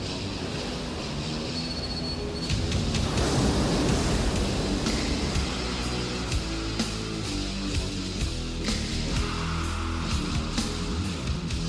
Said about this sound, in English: This shot is panning over the ocean, seeing lighthouses and all that cool stuff, rocks and the ocean. The water's breaking and cresting over those rocks.